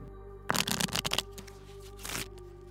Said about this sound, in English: Shuffle this deck.